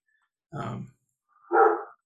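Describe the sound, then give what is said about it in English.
A dog barks twice, two separate gruff woofs about a second apart, clear with silence around them. “pray that Ben's dog would stay calm, I guess”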